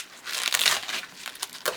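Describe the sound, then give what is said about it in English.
Crackly rustling and soft tearing as plants are pulled by hand out of garden soil, a dry crunching texture that swells and fades over a couple of seconds with no voices. “So what you normally do is just pull them out, right?”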